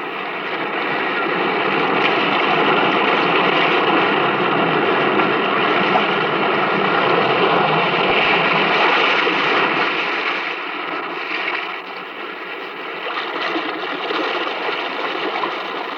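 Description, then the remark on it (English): Restless sea surf churns in a cave in a steady, hollow roar, loud and continuous with no voices, easing slightly toward the end before swelling again, at the opening of The Weird Circle. “In this cave by the restless sea, we are met to call from out of the past stories, strange and weird.”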